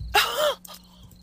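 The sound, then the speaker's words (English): One big, exaggerated sneeze in a field full of ragweed: a sudden loud, breathy burst with a voiced, falling tone that cuts off sharply, followed by a faint short exhale and near silence. “And Valis is going to let out this big, awful sneeze.”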